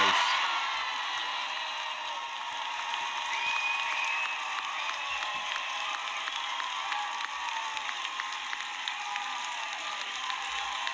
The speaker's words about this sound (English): Listen to the crowd, eh? Oh, yeah. Oh, it looks like they got a standing ovation, too. Standing ovation? The crowd was like... amped when he said that.